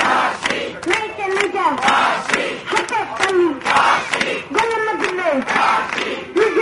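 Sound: protest crowd chanting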